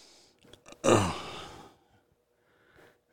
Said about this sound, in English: Even though, like I said, I'm dog ass tired. So I keep yawning, but it's not going to be a full hour.